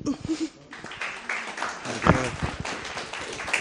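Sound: audience clapping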